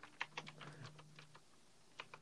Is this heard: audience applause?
no